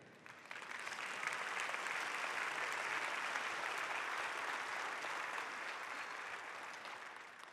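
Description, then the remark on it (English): A church audience breaks into sustained applause after a poem is recited, a dense, steady wash of many hands clapping that holds at an even loudness for several seconds, then eases slightly toward the end. “You clap for a B-minus poem right there.”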